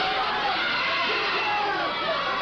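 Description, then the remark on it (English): A wrestling crowd jeers at Jimmy Hart during a match between Bobby Eaton and Steve Kern, a steady, dense roar of many voices, loud and continuous throughout with no single voice standing out. “Crowd getting on the case of Jimmy Hart.”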